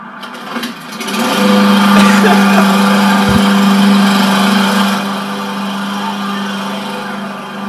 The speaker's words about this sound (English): Right now, Supreme Patty's got a lawnmower, and he's in the library right now, whipping the lawnmower around the library.